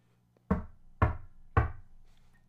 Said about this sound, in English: The wolf was not long before he reached the old woman's house. He knocked at the door.